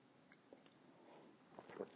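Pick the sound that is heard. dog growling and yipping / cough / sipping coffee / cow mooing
sipping coffee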